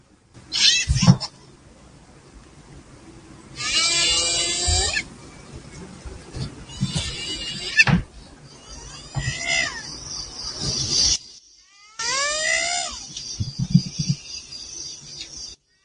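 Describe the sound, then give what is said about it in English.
A hyena calls again and again: loud whoops and wavering cries that sweep up and down, separated by brief pauses, with no one speaking. “It's a hyena.”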